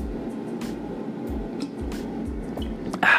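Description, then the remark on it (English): Quiet sipping and swallowing of water, with soft wet gulps and small liquid squishes repeating every half second or so, ending in a brief louder rustle. “I'm going to take a little sip of my water here.”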